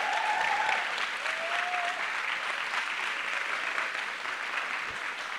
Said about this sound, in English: I didn't tell you to stop. You can keep clapping if you want.